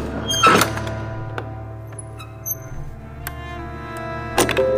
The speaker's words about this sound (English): And, rather unceremoniously, one of the three men opens the only door to the black cube.